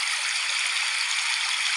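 A steady babbling brook sleep sound, played to fall asleep at night, flows without pause, its bright, hissy rush of water filling the mid and high range evenly at a moderate, soothing level, with no voices present.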